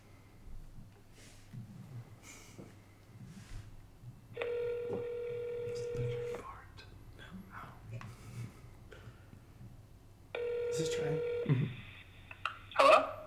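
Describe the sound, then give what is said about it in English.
An outgoing phone call ringing: two long, steady ringback tones about two seconds each, separated by a pause, fairly clear over a quiet, slightly noisy background. “I'm about to call Trey. So here we go.”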